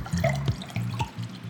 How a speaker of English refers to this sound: Go ahead and join me in pouring yourself a glass of wine, as I cannot express enough just how inspiring this interview was.